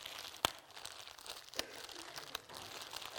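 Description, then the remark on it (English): Plastic crinkling and crumpling as a bag of beanbag chair stuffing is pulled open, with a few sharp crackles and pops standing out over a steady rustle. “This is just a bag of, it's stuffing for a beanbag chair, in case you're wondering.”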